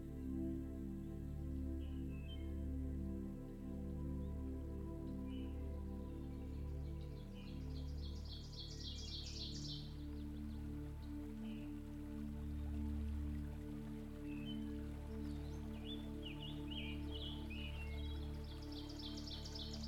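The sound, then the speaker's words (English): A steady, continuous rush of a river flowing through woods fills the scene, with bright bird chirps appearing intermittently above it and a low, sustained hum underneath. “at the bottom of the steps, you can hear the river flowing ahead of you around the corner, and you continue to walk towards it.”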